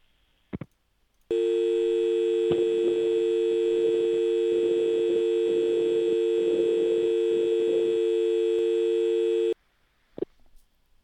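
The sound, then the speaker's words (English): A steady telephone dial tone hums loudly and continuously for about eight seconds, starting and stopping abruptly, with a few faint clicks just before and after. “She didn't fall for the dial tone, goddammit.”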